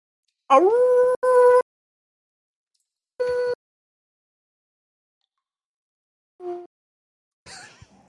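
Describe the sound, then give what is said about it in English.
A person, asked by an audience, imitates a wolf howl: a long, rising wavering cry with a short break, followed by a brief second howl, then a short yip and a faint breathy sound, with silence between. “And the question is, can you do a wolf howl?”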